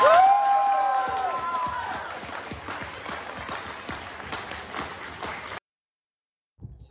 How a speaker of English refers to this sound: Let's have a big round of applause for all the winners.